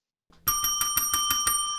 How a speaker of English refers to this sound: Well, there's the sound of the bell, which we all know by now means it's game time here on Another Day Above Ground. This is when we play Boom Again.